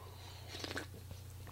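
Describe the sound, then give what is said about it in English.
A quiet sip of coffee from a cup: a brief wet slurp with a light clink, over a steady low electrical hum and no talking. “So let me take another sip of coffee.”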